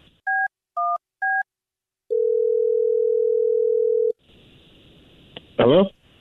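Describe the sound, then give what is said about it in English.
A phone number is dialed: three quick telephone keypad beeps, then a single long, steady ringing tone over the line. After it stops, faint line hiss follows and a brief voice comes through near the end. “Well, I'm going to dial this phone number right now and see if we can figure it out for you, okay?”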